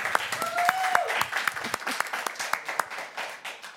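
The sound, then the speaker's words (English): A church audience applauds its many members who already serve: dense, steady clapping from many hands, with a short whoop or whistle near the start. The clapping thins into scattered individual claps toward the end. “Like, that is something for us to all give a praise and an applaud to, like, for real.”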